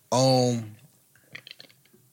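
A single loud, low, drawn-out burp lasting about half a second, followed by a scatter of faint clicks and mouth noises.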